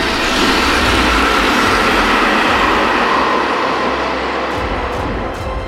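dragon roar

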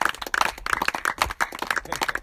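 audience clapping

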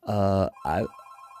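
telephone ringing

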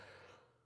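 throat clearing

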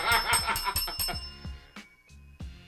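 bell ringing

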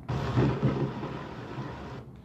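thunderstorm with thunder

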